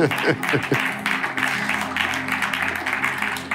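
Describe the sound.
An audience claps their hands for God steadily for several seconds, a dense, continuous patter of many hands, with voices calling out beneath the applause.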